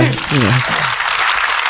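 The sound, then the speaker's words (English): A steady burst of crowd applause for a man introduced as the manager, a dense wash of clapping that fills the whole clip, with a voice calling out briefly over it at the start. “No, give him the round of applause.”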